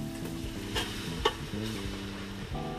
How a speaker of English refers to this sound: And then, now I'm going to add the tomato paste.